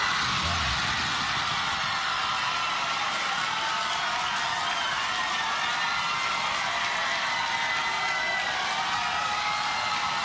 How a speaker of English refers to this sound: And the cheering continues for some time here. $1 billion donation, so now the tuition's going to be free.